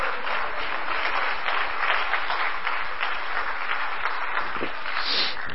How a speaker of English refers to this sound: Why don't you clap your hands to the Lord as you're seated.